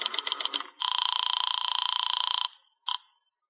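A burst of quick dialing tones, then a telephone ringing over the line on a call to Madame Natasha's Temple of the Zodiac: one long trilling ring followed by the brief start of another, fairly loud and with no voices.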